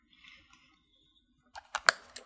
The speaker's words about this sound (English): Got to take another zip of water here. A bit thirsty on this hot evening.